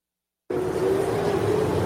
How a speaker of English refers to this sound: I'm gonna have to wait. Yeah, he says we're gonna have to wait because there's a car going by.